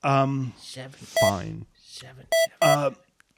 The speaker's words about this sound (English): I'm keying it into the cell phone.